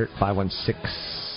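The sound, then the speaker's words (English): A voice imitates the hissing snake from The Jungle Book, with a brief voiced sound at the start and then a long, steady hiss held until the end. “The Snake from Jungle Book.”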